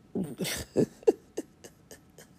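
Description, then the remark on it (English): A person yawns aloud: a breathy, voiced stretch at the start, then a string of short squeaky bursts that grow fainter and trail off, with no talking. “You probably yawned it with me.”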